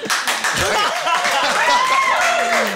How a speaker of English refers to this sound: getting applause for it. Yeah. This audience is amazing. Thank you. That's very kind.